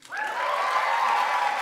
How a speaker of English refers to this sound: Can I have a round of applause for how eager you are to hear from them?